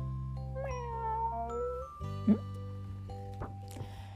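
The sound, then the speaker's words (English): A single drawn-out cat meow rises and falls over a steady musical backing, followed by a few soft, bright chiming notes. “And the snake saw a cat. Meow.”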